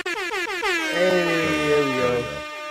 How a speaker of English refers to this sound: Hey, where air horns at, man? Turn the air horns up.